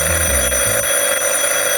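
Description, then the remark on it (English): A telephone rings loudly and continuously, a bright, high-pitched, steady bell-like tone that holds without a break for under two seconds, with no voices. “If you recall our last episode, Ned and Mahoney were giving a rubdown to Police Chief Harrington when the phone rang kinda sudden-like.”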